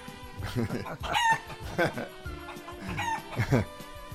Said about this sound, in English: Now you got chickens in the place? I don't see them in the studio.